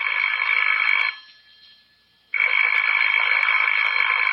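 household object, telephone ringing

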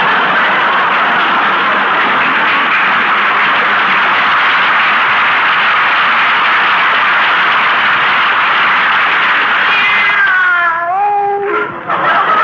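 animal, cat meowing

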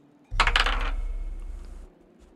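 household object, dice being rolled

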